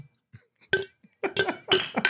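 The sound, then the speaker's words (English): Several glasses clink together in quick succession, bright ringing taps bunched into a few bursts, fairly loud, like a round of toasting with no voices. “Cheers. Well said. Clinks. Clinks.”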